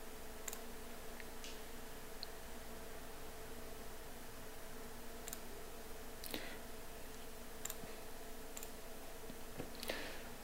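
Sharp, sparse computer mouse clicks at irregular intervals, sometimes in quick pairs, fairly quiet over a steady low electrical hum, with no talking, as someone installs the MPC-HC 1.7 media player on a computer.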